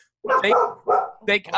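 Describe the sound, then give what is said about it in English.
A boxer dog named Susan Lucci barks several times in quick succession, loud, with short harmonic woofs separated by brief pauses. “Yeah, that's one of our boxers. We have two boxers.”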